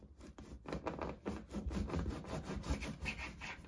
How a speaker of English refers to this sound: Take your sharp knife and try to slice it as thin as possible.